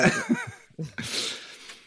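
A voice imitates a squeezed dog's bagpipe-like noise: a wavering, nasal whine that rises and falls, then a couple of short grunts and a long breathy, wheezing rush of air.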